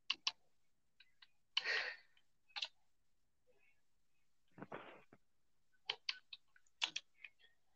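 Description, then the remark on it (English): Irregular bursts of crisp keyboard typing, with clusters of sharp key clicks separated by short pauses and a couple of heavier, longer presses like a spacebar or enter key. “Did you just do the same thing with your keyboard this time again?”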